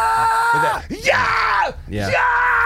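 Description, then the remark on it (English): A loud voice belts high, strained scream-singing as a demonstration of a high-pitched scream-singing vocal technique: sustained gritty notes broken by swooping pitch slides, two long held phrases across a few seconds, with no spoken words. “But that one's interesting because it's more singing than screaming.”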